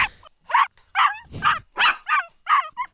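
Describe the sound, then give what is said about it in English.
A dog gives a rapid series of about eight short, high yips and whimpering barks, evenly spaced, with no other sounds around them. “Sounds like a sad dog wanting to be bought at the pet store or something.”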